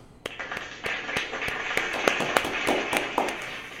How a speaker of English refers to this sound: All right, so happy birthday to them. Let's give them some cheers. And a little bit of applause.